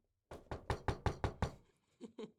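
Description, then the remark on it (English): A quick run of seven or so evenly spaced knocks on a door, fairly crisp, followed after a short pause by two softer taps. “And then I heard a little knock at my door.”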